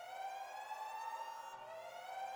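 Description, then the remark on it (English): A loud, continuous electronic alarm blares with a steady, piercing tone rich in buzzy overtones, holding for a few seconds with only a slight wobble midway and no voices. “So you hear this alarm go off in the night and everybody snaps awake.”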